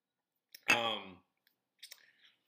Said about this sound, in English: Have another Labatt, you bitch. Here we go, another sip.